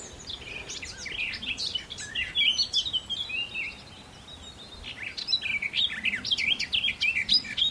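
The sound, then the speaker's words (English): A garden warbler sings a rich, rambling warble in two long, rapid phrases separated by a short pause, clear, with no voices. “This is a garden warbler.”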